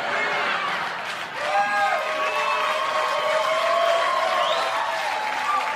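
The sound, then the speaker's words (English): An audience claps steadily throughout, a dense wash of applause with high whoops and cheering voices rising and sliding over it at an even, fairly loud level. “Motherfuckers clapping and shit.”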